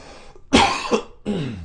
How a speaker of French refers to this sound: Excusez-moi, je vais devoir encore tousser.